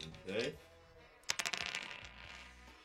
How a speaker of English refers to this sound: if you'll roll your dice, please.